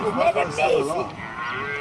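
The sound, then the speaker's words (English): A calf bawls in distress as lions attack it, a loud wavering moo that rises and falls for under two seconds, then trails into a steadier strained cry as the still-living calf tries to get away. No one speaks over it. “The calf's still alive. It is? Yeah, it's trying to get away.”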